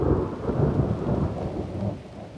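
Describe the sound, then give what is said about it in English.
Thunder rolls loudly and steadily, a deep, sustained rumble that fades slightly toward the end, with a faint hiss of rain underneath and no voices. “A crack of thunder replies.”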